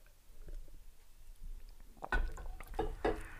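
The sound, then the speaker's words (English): After a quiet couple of seconds, someone takes a sip of canned beer: a few soft, wet slurping and swallowing sounds in short bursts, with no talking. “Yeah, I'm going to say, let me take one more sip of this.”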